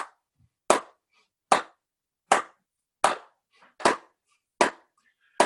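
A church audience claps in unison on a 2-4 beat, about seven sharp, loud claps spaced roughly three-quarters of a second apart, with no voices.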